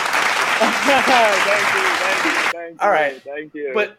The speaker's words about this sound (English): Oh, he says give it to him, and you know what I have to do? You know what I have to do? I have to give him the applause.